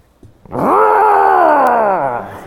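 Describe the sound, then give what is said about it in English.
A person imitates a dog's growl, a single sustained, loud, throaty rumble lasting about two seconds with a slight rise and gradual fall in pitch, heard alone. “You've now got, this was in the news this last week, the challenge that teachers have when their students are identifying as cats, dogs, horses, and dinosaurs.”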